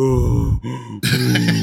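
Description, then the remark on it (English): A voice imitates the heavy, raspy breathing of a masked horror-movie killer in loud bursts, with a brief break between a drawn-out inhale and exhale, sounding strained and almost groaning. “You hear him in the old school movies just breathing.”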